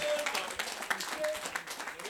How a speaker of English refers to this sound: Thomas, clap for Thomas. Look, Thomas is a very powerful guy.